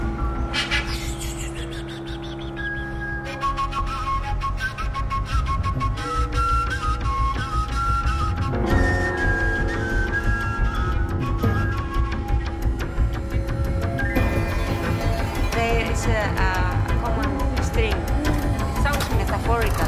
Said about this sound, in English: Yeah, like make it swing, going in circles fast, so that way, you know, the wind gets into the tube naturally and it makes the sound.